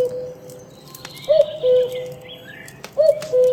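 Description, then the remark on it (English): A cuckoo clock calls twice, each a clear two-note "cuck-oo" spaced a second or so apart, loud over a quiet, faintly rustling background with no talking. “What is this? A cuckoo bird? That's what it sounds like, but I didn't think that was a real thing.”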